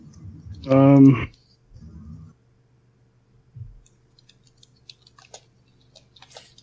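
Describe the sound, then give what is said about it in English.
After a short loud vocal burst near the start, soft scattered keystrokes tap irregularly on a computer keyboard over a low steady hum, growing a little busier toward the end. “I was just typing that.”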